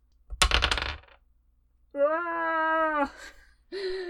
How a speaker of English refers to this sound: And then, yeah, I'm cool with just rolling both my dice.